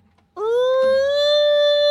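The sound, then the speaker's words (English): A voice mimics an emergency siren, sliding quickly up in pitch and then holding a loud, steady wail for well over a second. “The best part, my favorite part of the whole movie was when they were stuck in traffic and he had to be the siren.”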